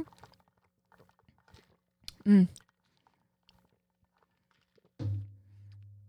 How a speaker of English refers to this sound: So, quick sip.